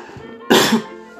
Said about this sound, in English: Oh, excuse me. It's so friggin' funny, I just coughed. And I'm fighting a little bit of a cold.